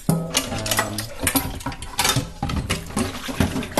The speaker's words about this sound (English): Well, step one is always, if there's dishes that can go into the dishwasher, put them in the dishwasher.